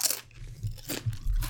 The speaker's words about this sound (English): And now chewing a little bit, and now the chip goes in.